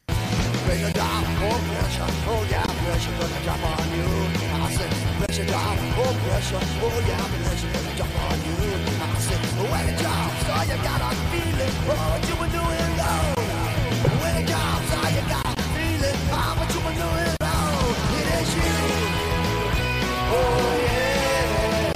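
A loud, dense rock track plays steadily throughout, with a driving distorted guitar riff over a thick, pulsing bass line and no pauses or talking.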